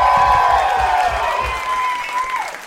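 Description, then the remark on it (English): An audience bursts into loud, sustained applause mixed with cheering and whistles as Hans Kim is introduced, a dense wash of clapping that holds steady for a few seconds before easing slightly. “Come on, make some noise for Hans Kim, everybody.”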